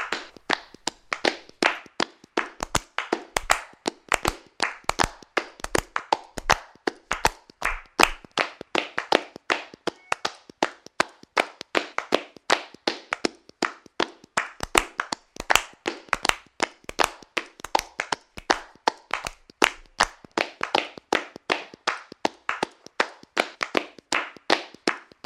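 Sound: hands clapping and tapping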